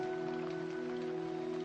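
Steady rain falls, a constant, even hiss with no breaks, mixed with a faint sustained hum or tone underneath.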